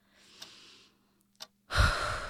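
A slow deep breath taken to calm down: drawn in with a soft airy hiss, a brief pause and a small click, then a heavier, louder exhale like a sigh, with no talking.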